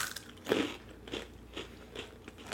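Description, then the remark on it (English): A crisp bite into a crunchy, sweet honey snack twist, followed by a steady series of crackly chewing crunches at a regular rhythm, fairly quiet and with no talking. “Okay, let's try. But they have the coloration of a French fry, basically. Let's try it.”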